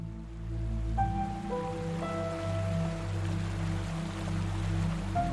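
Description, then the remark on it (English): A steady rush of flowing river water, where kayaks are put in at a large eddy and pushed out into the current, fills the whole stretch, constant, with soft sustained musical tones stepping in over it; no one speaks. “Then we put the yaks in at a large eddy, muttered some weird nervous shit to one another, and pushed out into the current.”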